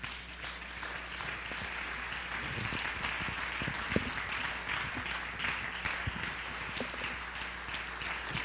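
An audience claps steadily for several seconds as a hand clap of praise, a dense wash of many hands with no clear shared rhythm, fairly loud and even throughout, with a low steady hum underneath.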